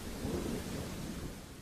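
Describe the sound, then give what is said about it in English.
Steady rain hisses across the whole clip while a deep, rolling rumble of thunder swells underneath, loud and continuous with no voices, on a wet and windy night in Wellington. “Then on a wet and windy Wellington night, the operation came to a head.”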